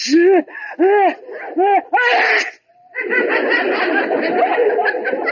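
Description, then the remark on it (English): A drawn-out sneeze from inside a closet: several quick rising vocal 'ah' sounds build up to one loud, breathy burst, followed by a sustained noisy jumble of voices or commotion. “That sneeze came from the closet.”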